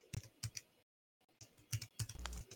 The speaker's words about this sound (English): He's typing in front of me.